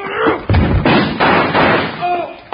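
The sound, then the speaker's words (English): Several heavy, booming blows strike a door in quick succession to break its lock, about four forceful impacts, with a brief voice-like sound at the start and end. “Hit the door hard enough to break the lock.”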